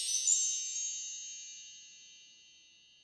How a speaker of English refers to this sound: Find out next time, later in the episode, on Wrong Boys Learning Time, Magical Chimes.